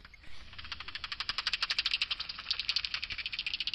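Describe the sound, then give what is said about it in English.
Calls of several bats through a bat detector by Battersea Park Lake: a rapid, dry train of crackling clicks that runs steadily for several seconds and quickens into a faster buzz of ticks near the end, with no voices. “It seems like we have a bit of a bat party here.”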